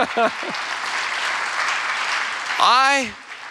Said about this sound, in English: Come on, you can clap right now. Come on.